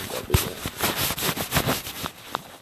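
Crinkly rustling of jacket fabric while taking a dog for a walk, a continuous run of soft scratchy swishes and brushing bursts that rise and fall irregularly, with no voices.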